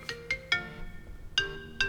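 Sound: phone ringing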